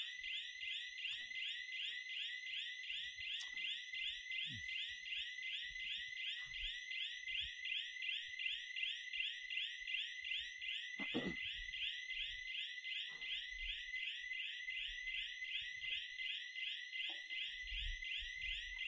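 A fire alarm rings continuously at a steady, piercing pitch with a fast pulsing warble, loud and unbroken for the whole stretch, with a few faint thumps and room noises beneath it.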